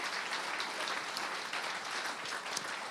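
A large audience at Calvary NSB church applauds steadily for a former youth pastor, a dense, sustained wash of many hands clapping at once with no pauses and no voices rising above it.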